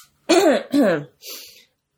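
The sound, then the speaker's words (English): A smoker's cough and throat clearing: two loud, raspy, voiced bursts followed by a softer, breathy hack, with no talking. “I'm not coughing because I have the thing, you know, it's just”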